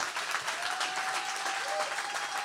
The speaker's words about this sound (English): Yes, clap for the Lord.